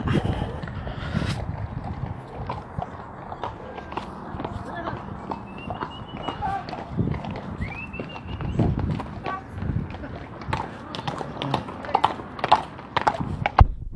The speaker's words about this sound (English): Like, you can hear the horses. Watch. You can hear them riding. They're like jumping up and down.